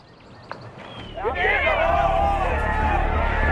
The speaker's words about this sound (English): make contact with the ball, they would start yelling, "Get in the hole." they all would yell, "Get in the hole."